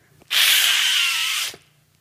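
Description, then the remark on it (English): A voice imitates a hissing sound heard on a plane on the tarmac as the engines start up: one steady, breathy hiss lasting a little over a second, bright and airy, ending abruptly, with no speech around it. “And I hear this hissing sound.”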